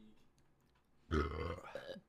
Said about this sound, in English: God. My eyes are watering. Mine is a little burp.